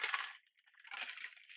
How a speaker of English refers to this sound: I'm gonna sip water. Hold on.